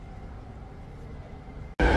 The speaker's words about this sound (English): And it isn't saying how long the train is going to be